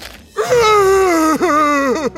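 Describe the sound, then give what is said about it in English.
A voice imitates the big monster of a story screaming: a loud, drawn-out wailing cry that slowly sinks in pitch, breaks off briefly, then swells into a second shorter howl. “Screamed the big monster.”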